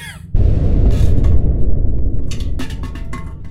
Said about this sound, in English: What in the hell was that? I'm no expert, but it sounded rather a lot like an explosion.